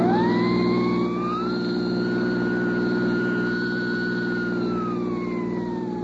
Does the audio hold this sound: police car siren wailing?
yes